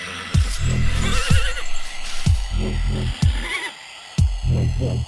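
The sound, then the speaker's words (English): Several ponies neigh and whinny in quick succession, loud, their shrill quavering calls repeating over a steady low rhythmic thump like a dance beat. “Yes, ponies, a bunch of real horses.”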